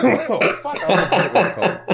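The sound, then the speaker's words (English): A loud fit of repeated coughing, several harsh bursts in quick succession with voiced, throaty sounds between them. “I was trying to get all of that out before that cough came up, and it did not happen.”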